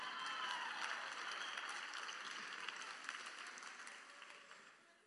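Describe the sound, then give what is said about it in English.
An audience at a sermon claps steadily for a man who stands and takes a bow, a dense wash of many hands that fades gradually toward the end, with no voices standing out. “Just stand up and take a bow, please, sir. Just clap, y'all.”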